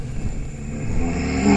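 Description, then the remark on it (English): A low, rumbling growl mixed with a broad rushing roar and the sound of wind coming through tunnels, steady and loud throughout, swelling slightly toward the end, with no voices present. “As you all come together and physically connect and are united as one facing this totem, you start to hear this rushing, growling sound moving through, mixed with the sounds of the wind coming through all of the tunnels you just heard.”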